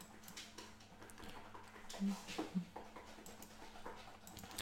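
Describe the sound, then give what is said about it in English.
A dog makes a string of whiny, whimpering noises with a couple of sharper yelps in the middle, over a steady low background hum. “All right, so that is all we're going to get to today, since my dog is now taking care of himself with loud noises.”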